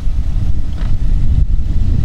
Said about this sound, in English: And that's a loud motorcycle.